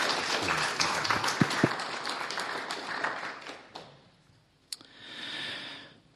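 Audience applause for a woman who has just shared her life story: a dense, steady patter of many hands clapping for about four seconds, then thinning out and fading, followed by a softer murmur of crowd noise.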